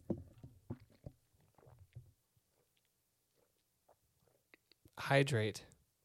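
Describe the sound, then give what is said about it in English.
Soft wet gulping and swallowing sounds of someone drinking water in a short run, then scattered small clicks and a quiet pause, ending with a loud, breathy satisfied exhale after drinking. “Hold on, I'm going to drink some water.”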